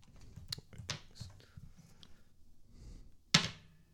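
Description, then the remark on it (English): Metal dice are rolled on a tabletop during a tabletop game, a quick irregular series of sharp clicks and knocks, then a short pause before one loud final clack. “Fucking metal dice.”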